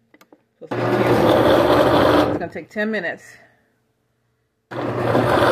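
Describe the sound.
A Ninja Foodi Hot Cold Blender motor runs loud and steady with a dense whirring roar while making ginger shots from water, turmeric and agave, stops as a person speaks briefly, then the loud whir starts up again after a short pause.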